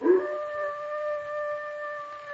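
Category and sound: animal, dog howling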